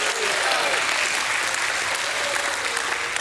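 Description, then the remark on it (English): An audience bursts into steady, dense applause with voices calling out praise over it, a sustained wash of clapping and shouts lasting a few seconds. “Somebody give him a hand clap and a shout of praise.”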